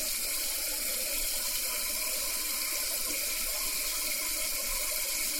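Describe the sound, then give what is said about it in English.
A faucet runs steadily, a continuous bright hiss of water splashing into a sink, fairly loud throughout with no pauses and no voices. “So just turn on your faucet and stare into it for a few minutes.”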